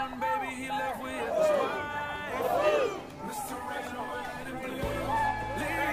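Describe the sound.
A large crowd of marchers in D.C., many wearing Trump "make America great" hats, fills the scene with a dense, continuous roar of many overlapping voices, shouts rising and falling, moderately loud and steady from start to finish.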